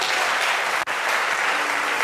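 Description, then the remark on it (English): A church crowd applauds steadily for people as they walk off to be prayed for, a dense wash of many hands clapping at once with no pauses, loud and sustained apart from one brief dip. “Would you clap for them as they go?”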